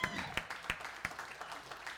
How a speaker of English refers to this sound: Okay, come up here. Come up here. Yeah, come on, give her a hand.